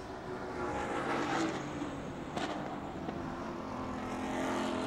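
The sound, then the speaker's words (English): Race cars in the second place battle of the TCR class, car 84, Brian Henderson's Honda Civic, and car 37, Shelby Blackstock's Honda Civic, roar past on a track in a steady, loud, droning wash with layered buzzing tones and a brief sharper burst midway. No one speaks. “Second place battle for TCR goes past in front of us now.”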